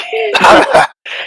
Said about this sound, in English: So when he does Thunder Wave and he knocks everybody back, I just cough up a little smoke.